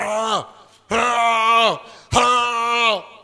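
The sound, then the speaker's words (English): A voice mimics snoring with three drawn-out, groaning breaths, each swelling and then sliding down in pitch, separated by brief pauses. It is fairly loud, with no other talk. “Some of you, your snoring cry is not nice.”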